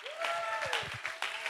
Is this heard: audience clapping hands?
yes